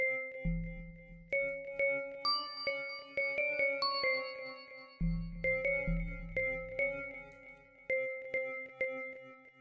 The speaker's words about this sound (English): Now I'm just gonna add a little flute or something on top of that. Ooh, a bell.